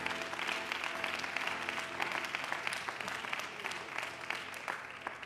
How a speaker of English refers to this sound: Why don't you give a great big hand clap to the Lord before you're seated?